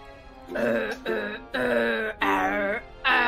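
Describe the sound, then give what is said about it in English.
A man sings the Bear Growl Song of Appreciation, a song of thanks sung in bear growls: a series of gruff, growling vocal bursts imitating a bear, about five drawn-out phrases separated by short pauses, loud and rough-edged with no ordinary words. “I want to sing Bear Tokyo's song, but I want to sing it in bear growls so that it connects to her. Let's hear the Bear Growl Song of Appreciation.”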